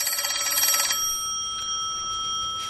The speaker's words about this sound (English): The phone ringing? Somebody answer that phone.